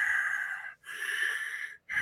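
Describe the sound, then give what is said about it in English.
A voice imitates heavy breathing, like a man taking breaths: two long, airy, hissing breaths separated by short pauses, with a third breath starting at the end, fairly loud with no other sound. “And the historians, and even the Bible gives us a glimpse of this, that it would sound like a man breathing. Like he was taking breaths, like a wow.”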